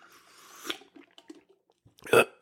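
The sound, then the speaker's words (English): A sip of iced Freedom Hill Coffee: a soft slurp and a few small clicks of ice, then a brief quiet and a louder swallow or satisfied breath at the end. No one speaks. “And before we do that, we're going to pause just for a moment. You know what's coming. That's right. For a sip of our preferred beverage.”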